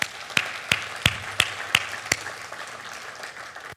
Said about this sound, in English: And the elders are a crucial part of that. And so let's give a round of applause for all their work.